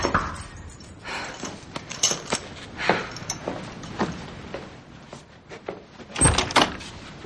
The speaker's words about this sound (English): But then, there's a knock at the door and Chuck is here.